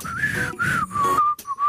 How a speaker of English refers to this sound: Is anyone else doing the whistles when that comes on, though? I did it a few times. Missed it that time there, unfortunately. I can't whistle very well.